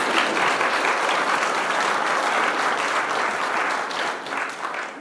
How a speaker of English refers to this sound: Will you all please clap for them and thank them for coming up?